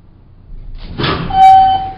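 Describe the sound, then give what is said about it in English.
A service lift door slides open with a rising mechanical whoosh and rumble, followed by a steady high tone ringing over the motion, with no voices. “When the door finally opened, I found myself inside another vast room.”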